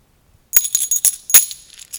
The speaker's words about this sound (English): These are real metal coins. That you can, you know, I told you I'd get this in here somewhere, that you can give to your players.